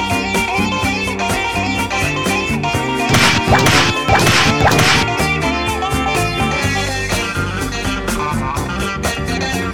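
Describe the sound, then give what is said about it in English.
A couple of sharp, loud slap-like cracks burst out in quick succession over steady, busy background music, standing out clearly before the music carries on alone. “If you ain't tapping, I'm going to start slapping.”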